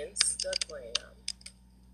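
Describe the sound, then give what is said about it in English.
Quick, irregular clicks on a computer keyboard as someone types an Instagram address, a short burst of typing that pauses and then taps a few more keys before trailing off into quiet hum. “And I'm typing her Instagram, but she has a YouTube channel too.”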